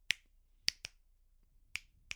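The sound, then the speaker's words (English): Five crisp finger snaps in an uneven pattern, a quick pair and then scattered single snaps, each sharp and bright against a quiet background with no voices, used as a snapping code, like Morse code, to tell a story without speaking. “And then at the end, they actually all know what had just happened through their snapping code.”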